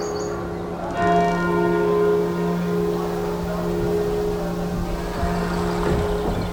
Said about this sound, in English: And hark, the little vesper bell that biddeth me to prayer.